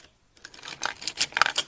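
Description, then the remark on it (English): Prismacolor colored pencils clatter and click together as they're handled, a quick flurry of light wooden taps and rattles after a brief moment of silence, with no talking. “There, you can hear them.”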